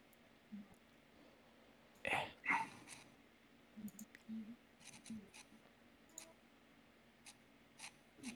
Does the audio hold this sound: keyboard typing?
yes